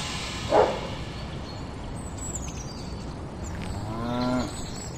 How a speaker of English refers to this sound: These were not your average contented cows. They were cows born for trouble.